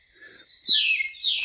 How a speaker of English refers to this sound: These are all tit. These are all titmouse. They have a lot of different calls. I mean, they're very vocal birds.